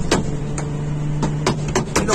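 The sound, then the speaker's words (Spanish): Gunfire from a live shootout with cars caught in it: around seven sharp, irregular cracks, some in quick pairs, ring out over a steady low engine hum, with no one speaking. “En caliente, señores, tiroteo de herida, señores.”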